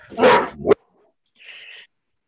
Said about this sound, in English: Speaking of wildlife, we've had coyotes like running by the window, carrying on. Isn't that crazy? Sorry about that.